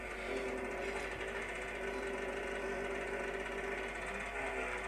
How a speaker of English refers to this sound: This is a fella starting a tractor. It's like the old Irish tractors. It starts on a petrol engine first and then switched over to a diesel engine.